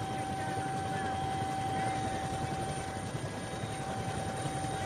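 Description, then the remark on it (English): A helicopter hovers while trying to land on a narrow strip of island about 20 to 25 feet across, its dense rotor chop and engine whine filling the whole stretch with an unbroken, steady roar. “But the problem is how we are going to be able to get out of this helicopter on such a narrow strip.”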